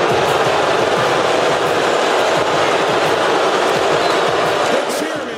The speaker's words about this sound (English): Wow, that's quite the boo.